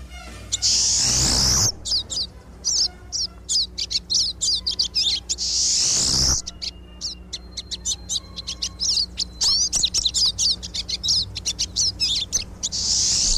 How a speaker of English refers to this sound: The pine siskin has a short, notched tail and a thin, pointed bill, which helps it feed on small seeds and tree buds and insects and spiders. and the pine siskin is definitely a bird worth listening to.